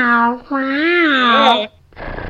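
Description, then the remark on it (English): A cat meows twice, a short mew followed by a long, drawn-out wavering meow, then a brief soft breathy rustle. “Yes, nobody's going to hurt you, little kitty.”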